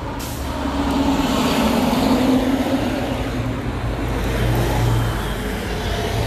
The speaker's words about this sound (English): Sorry about the cars. So sorry. I thought this was a good idea before. I guess it was not. Here come another school bus.